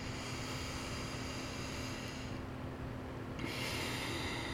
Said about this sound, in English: Just breathing it in. Om Aim Saraswatiay Namaha. And out. Om Aim Saraswatiay Namaha.